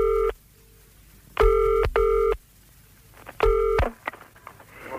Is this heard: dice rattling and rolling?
no